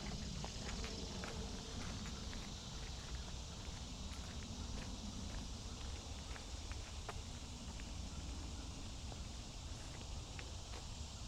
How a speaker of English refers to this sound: so we've just been walking on a path through the woods here. It's been shaded.